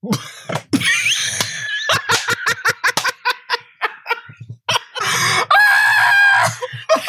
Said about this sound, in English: Your hiccups are the best part about this. They are like I can't.